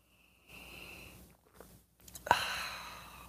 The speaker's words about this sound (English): But let's have the simultaneous sip anyway. That's all we need. Go.